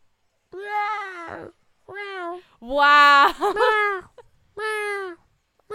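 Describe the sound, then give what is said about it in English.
A human voice imitates a cat, drawing out four or five loud, whiny meows in a row, one longer and wavering, with brief pauses between them. “No, I'm mimicking your stupid cat.”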